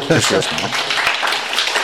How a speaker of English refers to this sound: I think we can applaud for that.